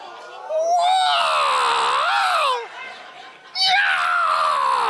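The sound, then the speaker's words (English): A voice imitates Bruce Lee's martial arts battle cry before a strike: two loud, high-pitched wailing yells, the first long with a rising and bending pitch, then a brief dip before a second sharp shriek. “So whenever Bruce Lee was about to strike, what would he do? Make the Bruce Lee noise.”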